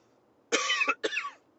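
Two loud, harsh coughs, one right after the other with a brief gap, sounding like someone clearing a scratchy throat. No one speaks.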